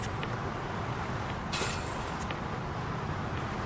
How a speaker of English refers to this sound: So he's just in an underpass shooting hoops. Cars are whizzing by.